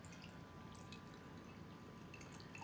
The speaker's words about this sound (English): Okay, so now we're gonna strain into the glass.